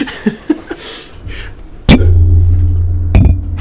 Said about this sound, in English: I know you're trying to clink the glasses. Oh, it's just going to come across as deep bass. That's all.